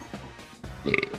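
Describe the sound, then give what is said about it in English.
A buzzy mouth fart blown through the lips, lasting about a second and growing louder and raspier toward the end, with no talking around it. “That was actually a mouth fart.”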